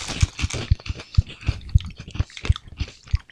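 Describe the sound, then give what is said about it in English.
Someone chews crunchy bacon-flavored nuts with an orange coating in a steady rhythm, about a dozen crisp, crackly bites with dull low thumps underneath, and no talking. “I could sit down and eat about a bag of these.”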